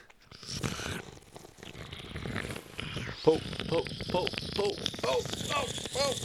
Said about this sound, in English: You've got to get the spit in your mouth. Chew your tongue. Produce more saliva.